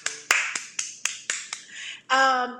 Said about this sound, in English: Why you act like you're giving us some kind of clicky clap?